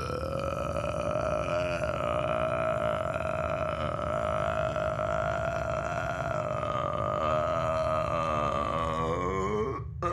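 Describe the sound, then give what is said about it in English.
A huge, drawn-out burp from an alien after drinking water rumbles loudly and steadily for around ten seconds, its pitch wavering slightly before it cuts off abruptly. No one speaks. “Satiated, Gorkil rips an enormous burp.”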